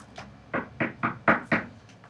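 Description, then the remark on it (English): A series of knocks on a hotel room door by housekeeping: a soft tap, then five firm, evenly spaced raps, with a faint final tap at the end. Fairly loud, with no voices. “Housekeeping. Okay, with the knocking.”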